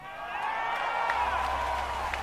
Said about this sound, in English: Why are they cheering?